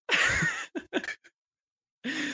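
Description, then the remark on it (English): Heavy breathing into a microphone: a long, loud exhale, a few short huffing puffs, a brief silence, then another forceful breath starting up. No one speaks. “You're breathing into your fucking microphone.”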